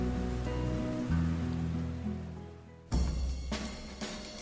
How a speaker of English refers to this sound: we are currently experiencing a weather delay as we wait for this front of acid rain to pass through the area